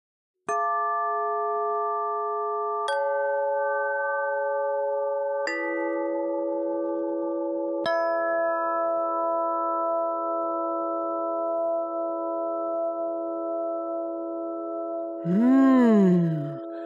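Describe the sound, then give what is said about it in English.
Four bright chimes are struck a couple of seconds apart, each tone ringing out and lingering in a long, shimmering sustain. A brief wavering, sliding tone rises near the end. “Those beautiful chimes wake up my ears, and I feel my heart open, and it hears them too.”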